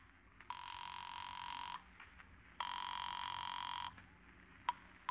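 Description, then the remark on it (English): Two long electronic ring bursts of a call placed from a phone booth at the Juneau airport, steady and buzzing with a bright tonal line, separated by a short pause, heard as if through a telephone earpiece over low background hum, followed by faint clicks. “It's not quite 7 o'clock when Gartland sets the little supply plane down at the Juneau airport, and you hurry to a phone booth to call”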